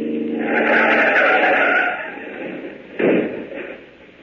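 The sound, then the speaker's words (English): A car engine roars loudly for about two seconds as a car is forced off the road into a ditch, fades to a lower rumble, then a single heavy thud of impact hits before the noise settles. “Step on it now. Run her off the road. Now, run her off in that ditch.”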